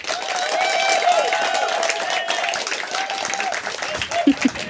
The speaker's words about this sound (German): Das war ein ziemlich ordentlicher Applaus.